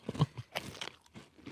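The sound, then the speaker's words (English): Someone crunches into a hot chip, giving a quick run of five or six crisp, brittle crackles in an uneven rhythm, moderately loud with no talking. “Well, that's a hot chip.”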